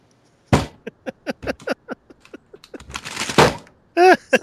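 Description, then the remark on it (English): A hard slam on a desk sets off a scatter of light clicks and knocks as something tips over, then a louder rattling clatter, with a brief voice at the very end. “I knocked over a thing with that desk slam.”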